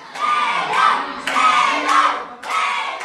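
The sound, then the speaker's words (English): A loud crowd of World Cup soccer fans cheering on their country's team, shouting together, rising in repeated surging bursts with high-pitched yells, continuous throughout. “The World Cup soccer games are in full swing in Qatar, and around the world, fans are tuning in to cheer on their country's team.”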